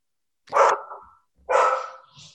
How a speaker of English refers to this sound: We have special guest appearance from someone's dog. Not one of mine, shockingly.